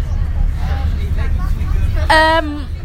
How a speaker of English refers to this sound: We're currently speaking from a bus. Yes. Just a bus. I should probably tell by the rattling and the children. Yeah. And other people talking.